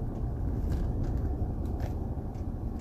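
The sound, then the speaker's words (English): A steady low rumble of a car driving slowly along a road after a day of rain, with water rushing down the roadsides, continuous engine and tire noise and a few faint higher crackles, no voices. “I'm driving slow on because I want to finish this podcast.”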